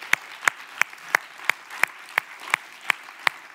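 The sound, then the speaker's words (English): An audience at City Life Church claps in unison to a steady, even beat, about eleven sharp claps in quick succession over a low background hum, with no talking. “Come on, you can clap for that, it's good.”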